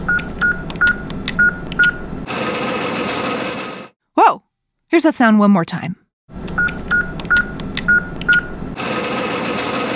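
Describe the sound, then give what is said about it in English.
An ATM cash machine: a run of short, evenly spaced keypad beeps followed by a steady whirring rush of cash being dispensed, heard twice with a brief burst of speech in between. “an ATM is a machine that you use to get money that you've put away in a bank”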